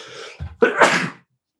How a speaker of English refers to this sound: She sneezes. It's also one of the effects of the pipe.